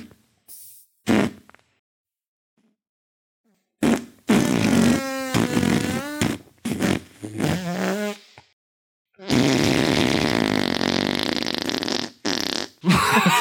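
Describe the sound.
A person blows a series of loud raspberry fart noises, some short and sputtering, others long and wavering, with brief silent gaps between bursts.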